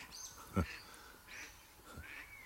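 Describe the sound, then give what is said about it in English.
A pet duck quacks twice, with a short sharp call and then another about a second and a half later, fairly faint against a quiet background. “That's Buddy my duck. I hope you can hear him.”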